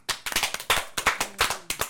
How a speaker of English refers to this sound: Are we really clapping?